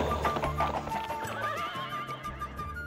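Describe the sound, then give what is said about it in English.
A horse whinnies loudly while its hooves clip-clop in a steady rhythm beneath, the neigh rising and wavering over the repeated hoofbeats throughout; the horse will not listen to commands. “I tried everything I could, but the horse wouldn't listen.”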